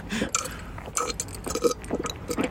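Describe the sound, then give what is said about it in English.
Someone gulps down a pint of orange juice with ice and a hint of vodka in a quick run of loud, wet swallows, about half a dozen in steady rhythm, with no talking. “Those gulps weren't added. That was literally singing off his pint of orange juice.”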